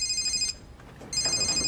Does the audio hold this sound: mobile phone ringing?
yes